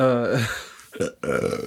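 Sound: burp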